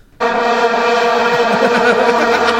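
A vuvuzela blares one loud, sustained buzzing note rich in harmonics. It begins abruptly after a brief silence and holds steady without a break, with a slight wavering in its tone.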